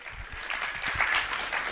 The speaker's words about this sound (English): You can sit back down, thanks. And give him a round of applause. He is now a nice guy.